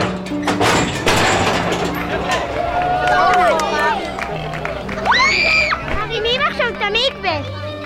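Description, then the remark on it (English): A lively outdoor crowd murmurs and chatters continuously, with children's high voices calling out and excited exclamations rising above the steady babble, as they watch a crane raise a mikveh high and lower it into a big, freshly dug hole. “The crowd watched the mikveh rise up, higher and higher, and then slowly be lowered back down into a big, freshly dug hole.”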